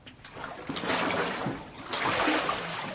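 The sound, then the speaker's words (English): Water splashes and sloshes in two surges as a person is immersed in a water baptism, with a heavy churning burst followed by streaming and dripping as water pours off, fairly loud, with no talking. “I baptize you in the name of the Father, and the Son, and the Holy Spirit.”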